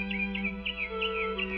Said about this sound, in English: Well, it's May 10th in Summerfield. Why on May 10th should the birds be singing so sweetly?